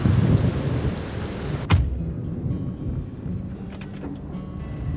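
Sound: heavy rain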